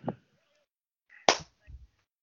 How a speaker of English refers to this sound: Can I get one clap?